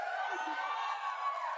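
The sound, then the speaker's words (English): A crowd at a PlayStation presentation of an Avengers game roars with cheers and whoops in a steady, dense wash of noise, many voices blending together with no single speaker standing out. “But before we go, the crowd is riled up.”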